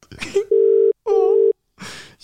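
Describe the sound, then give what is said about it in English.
Two steady, even ringback tones from a phone call sound in quick succession, each lasting about half a second, with brief breathy vocal noises before and after. “Oh, it's ringing.”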